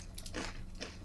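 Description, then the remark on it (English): Chewing of crunchy, smoky, mildly spicy snacks, with a couple of sharp, crisp crunches about half a second apart over a low background hum. No one speaks. “I'm worried about how noisy these are going to be. I'm going to eat over here. They're going to be quite crunchy.”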